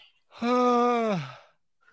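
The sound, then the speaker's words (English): A single loud, drawn-out yawn close to the microphone, a sustained voiced groan lasting about a second that sags in pitch and trails off into a breathy exhale. “Yeah, loudly yawning into the mic is the emotion that these college years bring out.”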